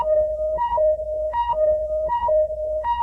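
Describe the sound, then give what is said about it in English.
A loud electronic two-tone warning beep, the Ultraman color timer, alternates rapidly between a lower and a higher pitch in a steady repeating cycle, about four times, with no talking. “Yeah, I can find a color timer effect.”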